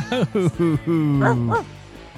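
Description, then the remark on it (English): A person's voice imitates a dog in heat: a few short yips followed by a long, drawn-out whine that ends in two quick rising-and-falling yowls. “Are you a dog in heat?”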